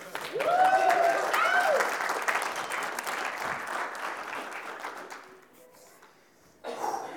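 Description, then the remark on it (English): An audience breaks into loud, sustained applause with a few whoops and cheers, gradually fading out before a brief final burst. “Give him a hand clap.”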